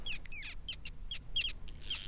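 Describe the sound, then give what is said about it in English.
A flurry of harsh, high calls from Arctic terns, birds with black caps and bright orange bills: short grating cries overlapping in quick succession like a busy colony, steady over a soft background hiss. “The Arctic terns and other birds help other species in this ecosystem too.”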